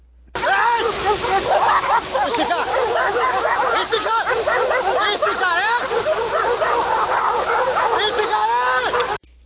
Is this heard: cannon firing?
no